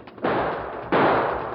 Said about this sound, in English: Hey, they're shooting. This way. Come on.